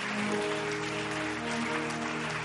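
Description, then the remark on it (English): An audience applauds as a clap offering during a sermon, in a steady, dense wash of clapping, with sustained low musical tones humming underneath throughout. “Increase that clap offering because something is coming to you.”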